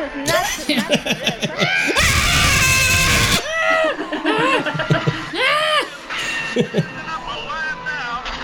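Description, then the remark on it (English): A small child screams behind riders on an amusement ride, several loud, shrill, rising-and-falling squeals, mixed with laughter, chatter and a brief burst of rushing noise. “A little kid screaming behind us.”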